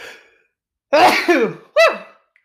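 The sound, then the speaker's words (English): A loud sneeze bursts out with a voiced, noisy release, followed a moment later by a shorter second sneeze-like burst; no talking, just the sudden explosive sounds. “I'm gonna sneeze.”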